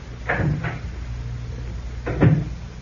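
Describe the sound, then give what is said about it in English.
A heavy oak door inside a tower, closing off an entrance: two quick wooden knocks, then a pause, then a louder, deeper thud with a low rumble underneath. No one speaks. “That big oak door there closes off the entrance to the sever.”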